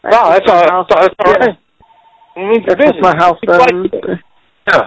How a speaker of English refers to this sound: Oh, and ignore that. That's just my house phone if you hear that. So. Oh, okay, okay. So, I mean, if you can hear that, I'm sorry, but...